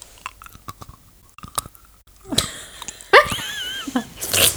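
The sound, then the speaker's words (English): Quiet, irregular crackling crunches as someone bites and chews a chocolate bar with the mouth open, followed by a louder burst of chewing and a brief wavering vocal murmur. “I'm going to do a crunch of this.”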